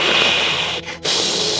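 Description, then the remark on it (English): About five lizards hiss as a door is opened, a loud, steady, breathy rush of noise that cuts out briefly partway through, then resumes just as strongly. No voices are heard. “As you open the door, they all look at you and then just start to hiss.”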